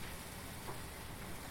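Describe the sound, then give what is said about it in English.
A steady, soft crackling hiss of burger patties sizzling on a hot grill, three of them on the grill, continuous and even throughout, with no voices and no distinct pops standing out. “You can start hearing that meat start to sizzle.”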